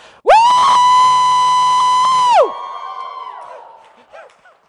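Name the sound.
woman screaming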